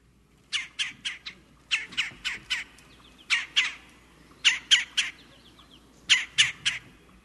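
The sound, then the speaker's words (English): A red-bellied woodpecker, a cavity-nesting bird, gives harsh, rolling churring calls in quick bursts of two to four, repeated several times with short pauses, clear over a quiet background. “we could not stump the expert because that bird is? A red-bellied woodpecker.”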